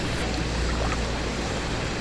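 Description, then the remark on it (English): Ocean water churns and rushes around a sinking ship with only one deck still above water, a steady, dense wash over a deep low rumble that holds constant throughout, with no voices. “There's only one deck still above water.”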